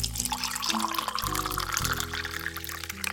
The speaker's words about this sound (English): I poured myself a fifth cup of coffee as my eyes began to feel heavy.